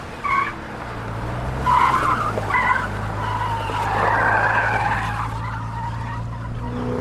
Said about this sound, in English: Mark drove crazily along the streets, dodging and weaving people, cars, and debris.